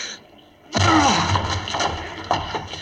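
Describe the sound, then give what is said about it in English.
A locked door is broken down with a sudden, heavy crash that breaks the quiet, followed by a couple of seconds of loud splintering and rattling noise with smaller knocks. “The door's locked. We can't get in. Break it down, then.”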